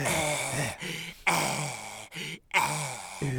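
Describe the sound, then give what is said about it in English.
Loud, heavy breathing close up, each breath rough and voiced like a groan, coming in several long bursts with short pauses between, no other sounds. “And that's when Billy runs over and just starts breathing hard on the back of his neck.”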